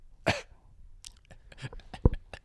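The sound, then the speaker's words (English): A person imitates a slight, dry cough: one short, sharp burst near the start, followed by softer breathy clicks and a brief throaty catch, fairly quiet. “Because that is, like, I think I said it before, like, that is the cough. Is it? It sounds like it, dude. Isn't it like a dry cough?”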